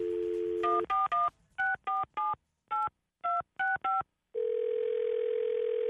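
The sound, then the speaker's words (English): A steady telephone dial tone gives way to a quick series of about ten dual-pitched dialing beeps in uneven bursts as a call is placed to a dry cleaners in Brooklyn, then a continuous ringback-like tone holds to the end. Clear, no voices. “He picked up the phone, and he called Eddie and his dry cleaners over in Brooklyn.”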